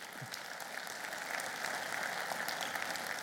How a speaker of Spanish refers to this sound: Celebramos a los bravos hombres y mujeres de uniforme de nuestra grande nación, los Estados Unidos de Norteamérica. Le damos un aplauso al Señor por ellos.